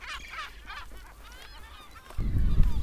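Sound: seagull calls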